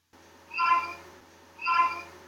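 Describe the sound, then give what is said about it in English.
A person imitates a cat, giving two drawn-out meows about a second apart, fairly clear against a faint background hum, with no talking. “The most difficult thing is that cats don't actually have a language amongst ourselves.”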